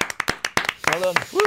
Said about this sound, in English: I think we need to start by giving this man a collective round of applause in the studio.